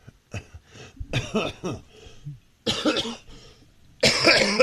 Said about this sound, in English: Well, yeah. I mean, I've been able to cough this entire time quite a bit.